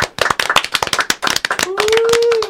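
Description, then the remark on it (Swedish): A short burst of lively applause, a few pairs of hands clapping rapidly and unevenly, with a steady sustained tone joining the clapping for its final second. “Ska vi drista oss till en applåd till chatten och lyssnarna?”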